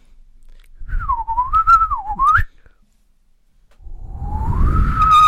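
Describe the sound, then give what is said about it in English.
A person whistles an imitation of a yellow crested warbler call: a warbling, wavering tone that dips and rises, breaks off, then returns as a rising, sustained whistle. Loud, with no talking. “That's a yellow crested warbler.”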